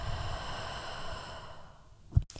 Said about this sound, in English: Do this deep breathing again, deep breathing through your nose and deep breathe out through the mouth. And one more time, deep breathing through the nose. And deep breathe out through the mouth.